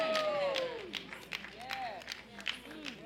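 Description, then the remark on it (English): An audience claps as a clap offering, in a steady, ragged beat while voices shout and call out over it, the applause moderately loud throughout. “You need a clap offering.”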